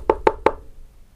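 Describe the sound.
Three quick, sharp knocks on a hard surface, evenly spaced in a brief burst, tapped out to imitate a woodpecker drumming, with a hollow mid-pitched ring to each strike.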